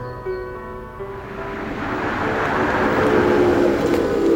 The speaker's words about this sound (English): It appears our car's arrived.